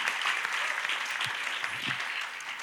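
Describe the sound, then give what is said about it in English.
A church audience claps for the Lord steadily, a dense patter of many hands clapping at an even, sustained level with no break, and no voices rising above it. “Give the Lord a big clap.”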